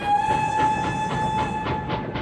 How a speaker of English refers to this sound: Holt heard the crunch of the train wheels moving. It was leaving.